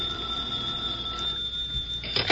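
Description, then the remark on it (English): A telephone rings with a steady, shrill bell tone sustained over a couple of seconds, moderately loud, ending in a brief clattering burst as if the receiver is lifted. “Esther, Oliver Niles is on the phone.”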